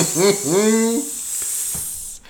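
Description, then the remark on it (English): A voice makes a long, steady sizzling hiss, held for about two seconds before cutting off abruptly, with a brief voiced, vowel-like sound near the start. “Yes, very exciting Game of Thrones news coming up in my world, which I'm sizzling.”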